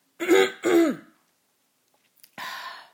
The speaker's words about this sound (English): Hang on, I'm going to just get rid of this phlegm that's in my throat, but not by hawking up a loogie, because that's disgusting. I'm just going to clear my throat. It's going to get loud and obnoxious, like me. Hang on.